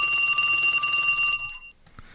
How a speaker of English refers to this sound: Oh, our phone is ringing. Let's check it out.